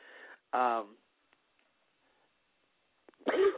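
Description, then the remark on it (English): Two loud coughing bursts with a rough, voiced edge, separated by about two and a half seconds of near silence and a few faint clicks. “excuse me, I'm losing my voice, coughing all this.”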